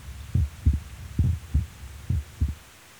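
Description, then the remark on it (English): A human heartbeat thumps in muffled pairs, lub-dub repeating about once a second over a low steady hum, with no voices present. “Could still hear his heartbeat then.”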